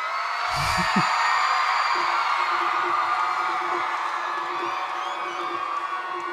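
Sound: concert crowd cheering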